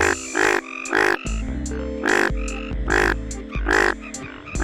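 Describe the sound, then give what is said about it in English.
Five loud, raspy calls of a male Indian bullfrog in breeding season repeat in an uneven rhythm, each a short nasal bleat, over a steady low droning background that persists throughout. “I like this frog because if you squint, a male Indian bullfrog during breeding season looks kind of like a lemon with 2 blueberries glued to it.”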